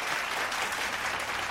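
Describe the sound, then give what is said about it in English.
A burst of audience applause, dense and steady clapping from many hands that stays at an even, fairly loud level throughout, with no voices over it. “I got to clap that up again.”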